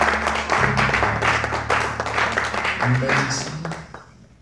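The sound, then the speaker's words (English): An audience bursts into sustained, loud clapping in praise, dense and steady for about four seconds before thinning out, with voices and a low hum underneath. “You've got a head clap of praise.”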